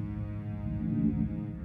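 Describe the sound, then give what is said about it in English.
A low, steady, magical humming drone of an invisible book, with rich layered overtones, sustained and even throughout, swelling slightly near the middle before settling back, with no voices present. “If it weren't for the hum and matching glow, Arthur would never have noticed the book.”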